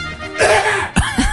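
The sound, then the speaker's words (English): A single cough with a brief throaty burst and a short follow-up rasp, sounding a little muffled as if partly turned away from the mic. “I'm going to have to cough.”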